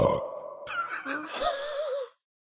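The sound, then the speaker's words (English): A single drawn-out burp after drinking sparkling water, fairly loud, voiced and wavering in pitch for about two seconds before cutting off into silence. “That's a sincere burp that I was a little surprised by.”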